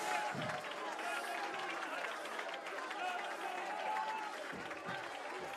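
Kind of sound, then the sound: crowd, audience clapping and shouting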